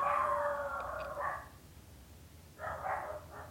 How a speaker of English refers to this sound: Okay, my dogs are... ignore my dogs that are yelling in the background.